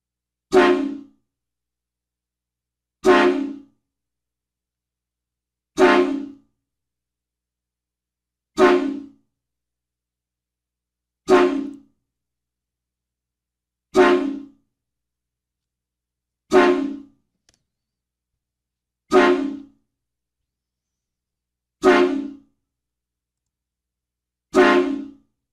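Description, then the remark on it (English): Ten loud train horn blasts sound one after another at a steady pace as a horn salute, each short and brassy, separated by brief silences, with no voices or other sounds. “The David Hernandez 10 train horn salute sponsored by Horn Blasters.”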